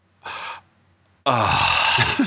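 A brief breathy whoosh, a short pause, then a loud, buzzy, sputtering fart sound effect that runs for about a second with a wavering low pitch.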